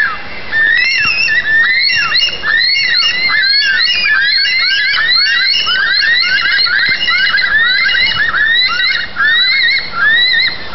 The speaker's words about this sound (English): Until then, listen to this bird. Just listen to it.